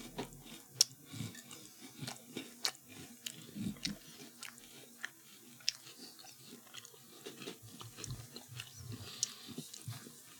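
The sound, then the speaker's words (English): Steady crunching and chewing of crispy chocolate-filled Crave cereal, with sharp brittle cracks scattered irregularly among wet munching sounds, no talking. “I'm going to try this before it gets too soggy.”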